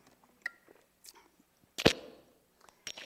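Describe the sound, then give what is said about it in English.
A quiet sip of water: soft wet mouth clicks, then one louder swallowing gulp midway and a brief final smack, with no talking. “Let me grab a drink of water.”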